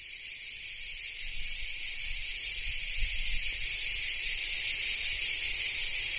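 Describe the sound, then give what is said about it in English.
A dense chorus of cicadas on a warm evening fills the air with a steady, shrill buzzing that holds at an even, fairly loud level for the whole stretch, with no voices and only a faint low rumble beneath. “she set off through the warm, cicada-filled evening to a no doubt gorgeous meal of mezes at the taverna.”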